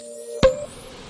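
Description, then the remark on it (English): A light bulb buzzes with a faint, steady electrical hum, broken by one sharp pop partway through, after which the buzz quickly fades out into quiet. “Hey, say, you hear that little buzz of the light bulb there?”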